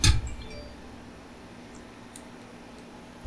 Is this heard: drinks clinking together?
yes